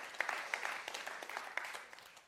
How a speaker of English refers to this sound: That's incredible. Clap it up. That's good stuff.